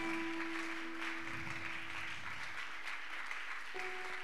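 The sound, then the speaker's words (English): A church audience claps for Jesus together in a dense, steady wash of applause, with a sustained low keyboard tone humming underneath that shifts to a higher note near the end. “Oh, the way you are clapping, I feel like.”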